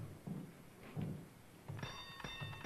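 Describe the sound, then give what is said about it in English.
A few dull thuds, then a bell at a door rings out with a bright, sustained metallic tone that lingers through the end, clear, with no voices. “You ring the bell.”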